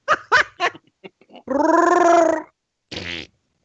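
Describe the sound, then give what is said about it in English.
A voice imitates a queef: a few quick sputtering puffs, then a long, buzzy, drawn-out blat lasting about a second, and one short final burst, all fairly loud. “Welcome for quality entertainment and queefs.”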